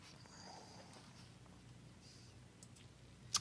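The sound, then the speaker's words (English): A few scattered keyboard clicks from someone typing over a low, steady background hum, ending in a brief, louder cluster of taps. No one speaks. “I was doing some typing.”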